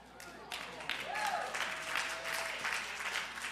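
An audience claps steadily for several seconds, a dense, continuous patter of many hands at even loudness, with a faint tonal sound briefly rising behind it.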